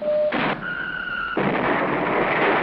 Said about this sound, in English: You can learn to operate these Lion-L missile launchers. And fire this IRBM launcher by pressing a button.